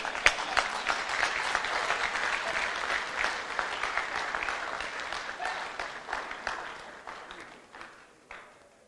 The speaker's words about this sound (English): Are you well? You are well. Then clap your hands for yourself.